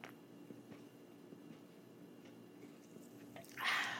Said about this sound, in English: Sorry about that if you heard me slurping down some soda.